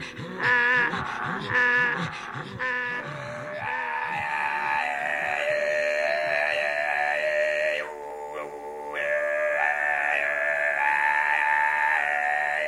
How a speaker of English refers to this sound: This is Tufan throat singing. This is called Borbandar, with fingers across lips. This is from Tuva, which is located in the Tanu Mountains on the Siberian border in northwest Mongolia